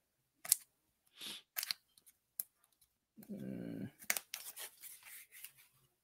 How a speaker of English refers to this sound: Little scissors here. I'm going to cut this tape.